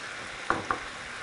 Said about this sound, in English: I'm gonna throw in these pine nuts that I have toasted earlier. Sprinkle those around.